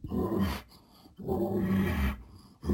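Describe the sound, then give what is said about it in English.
A person imitates a bull's panting call: loud, raspy, breathy huffs in a slow rhythm, a short one, a longer drawn-out one, then another starting, with no talking. “We know that bulls make a panting sound. They'll make a sound that's like this.”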